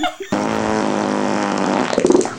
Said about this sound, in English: This one's called Best Fart.